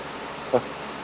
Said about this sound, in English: Yeah, that was my air conditioner. Sorry about that.